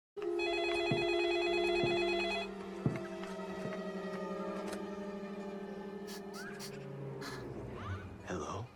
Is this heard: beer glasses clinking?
no